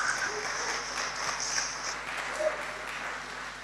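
Steady applause from an audience, a dense wash of many hands clapping at a moderate, even level for several seconds, with faint voices mixed underneath.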